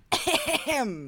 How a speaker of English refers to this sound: smoker's cough come up. Yeah, we're trying to deal with that.